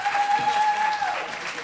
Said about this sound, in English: I like you. You're clapping.